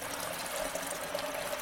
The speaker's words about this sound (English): So now I am making the hot water. And now I pour the hot water onto the coffee. And then I take the plunger. Oh, and I do, how do you call it? Oh. The French press.